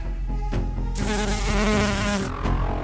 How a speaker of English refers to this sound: That's a bee. It's a bee. A bee buzz sounds a little, like, fatter, maybe. It's not as, like... I feel like wasps are, like, crackhead bees.